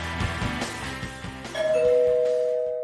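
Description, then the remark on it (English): A doorbell rings a two-note ding-dong, a higher tone followed by a lower one, both ringing on and slowly fading, over a soft rhythmic music bed with no voices. “Someone's at the door.”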